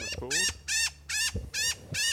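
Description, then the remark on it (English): A young male blackbird, caught in a net as the first bird of the morning, gives loud, harsh alarm calls: five strident bursts in quick succession, evenly spaced with brief gaps between them. “Got a blackbird. First bird of the morning. Very loud blackbird.”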